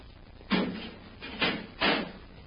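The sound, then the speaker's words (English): A heavy door into a tunnel swings shut in a few solid, clattering thumps, three knocks within a couple of seconds, fairly loud against a quiet, low hum. “Better close the door behind us”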